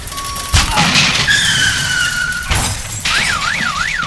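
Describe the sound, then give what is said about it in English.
Two loud, sharp crashing impacts of a car being dropped and smashing ring out over wailing emergency sirens that sweep and warble throughout. “Dropping the car.”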